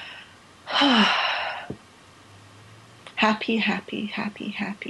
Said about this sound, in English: So I'm going to try. I'm going to take some Zen breathing.